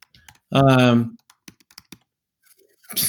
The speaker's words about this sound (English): You know, I'm typing some things to you like you have a weird butt and emoji virgins and pussies. That's what I just wrote.